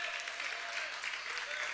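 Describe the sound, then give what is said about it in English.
A large crowd claps steadily and loudly in praise of God during worship, a dense wash of hand claps mixed with cheering voices, sustained at an even level from start to finish. “Come on, we clap here, we shout here, we can dance here, because our God is awesome.”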